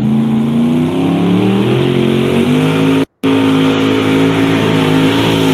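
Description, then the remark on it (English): A Massetti pulling tractor's engine roars loudly and steadily, its pitch climbing and wavering as it revs, with a brief cut to silence just past the midpoint. “That's your all's tractor, right?”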